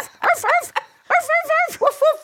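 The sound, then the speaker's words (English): A person imitates a dog barking with a quick run of loud, voiced woofs, three in a burst, a short pause, then about five more in a steady rhythm. “Yeah, but it's read by a dog.”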